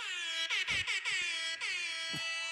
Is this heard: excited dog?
no